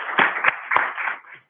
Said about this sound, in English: You guys are phenomenal. Let me give you all a big round of applause. Well done, guys.